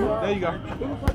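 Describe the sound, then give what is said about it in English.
A steady murmur of overlapping voices from a crowd gathered outdoors in Sherman Park for supervised boxing bouts among young people, several people talking at once with no single voice standing out, broken near the end by one brief sharp thud. “The crowd takes turns.”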